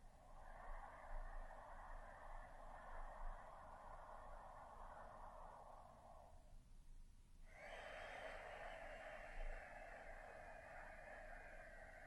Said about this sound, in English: So use the muscles, take bigger breaths, and run it through the filter, breathing through the nose.